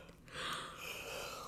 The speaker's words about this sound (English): Just a little yawn. Oh no, chain reaction of sleepiness.